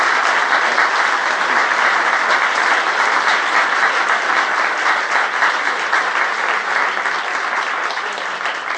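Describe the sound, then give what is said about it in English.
Sustained applause from a large audience in New York welcoming Kamel Daoud, a dense steady wash of clapping that stays loud and even for about nine seconds, with no voices on top. “Before we begin our conversation, please join me in welcoming Kamel Daoud to New York. A round of applause for Kamel Daoud.”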